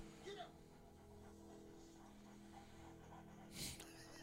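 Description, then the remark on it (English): Huskies and a pug in the snow pant quietly in the background, with a couple of sharper breathy bursts near the start and end, under a low murmur of voices. “The dogs are pissed.”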